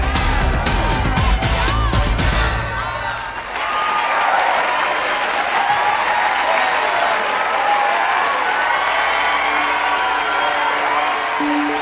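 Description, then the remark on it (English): A clapping sound effect: loud, sustained applause from a crowd, dense and steady, with cheering mixed in; music plays briefly at the start before the clapping takes over. “Include clapping or like Degrassi happy music here or something.”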